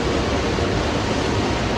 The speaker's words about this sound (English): Then we hear a rush of water with Scott looking ahead to a waterfall.